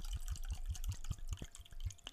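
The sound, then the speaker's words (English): Liquid glugs and splashes in a quick, rhythmic pulse as a friend pours wine into a glass, with bright trickling detail over each gulp and no one talking. “I'm glad that y'all are back, man, listening to another episode while my homie pours the wine up.”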